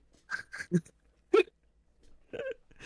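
A dog licks a plate clean, giving a handful of short, wet, irregular slurps and clinks separated by brief pauses, fairly quiet, with no talking.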